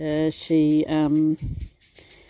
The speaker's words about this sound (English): Oh dearie me, you can hear, what you can hear is Mrs. Blackbird.